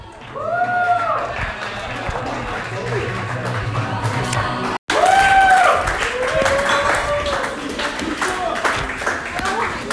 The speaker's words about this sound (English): Yeah, keep clapping